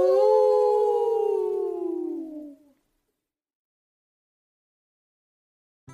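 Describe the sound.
A voice imitates a dog's howl: one long, loud, drawn-out wail that slides downward in pitch for about two and a half seconds, then fades into silence.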